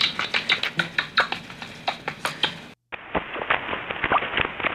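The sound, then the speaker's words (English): Rapid, irregular chirps and clicks from a rat being tickled, a high-pitched sound not audible to humans made hearable through computer software, patter along in quick bursts, break off for a brief silent gap, then resume with a thinner, more muffled tone. “Apparently the rat likes being tickled.”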